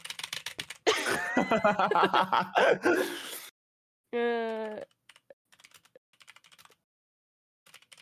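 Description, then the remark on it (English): Rapid clattering keystrokes on a computer keyboard, typing a Google search for Big Muddy Monster, come in hurried bursts, broken up by a stretch of giggling laughter and a brief hummed tone before the quick, scattered typing resumes. “Frantic typing.”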